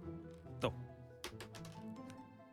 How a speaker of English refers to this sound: We will roll the dice.